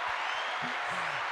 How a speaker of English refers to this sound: No, I need that. I need that applause on that. I need the applause. Which one is the applause? Hit the yellow one.